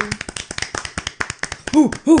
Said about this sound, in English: It's the end of our first season. Well, I think we deserve a round of applause. We do.